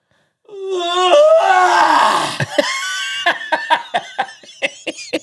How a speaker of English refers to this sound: apparently I make some sort of like noise when I yawn